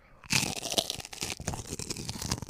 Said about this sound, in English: I'm going to take a bite of this goat cheese. This blueberry goat cheese with the cracker. And I'm going to do a little ASMR.